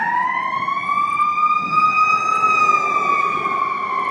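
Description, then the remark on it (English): The siren of the second of two fire trucks wails loudly and steadily, its pitch rising slightly then easing as it passes by, with the rumble of traffic underneath. No one speaks. “All right, anyway, I hope they're all right, because that's a lot of fire trucks going.”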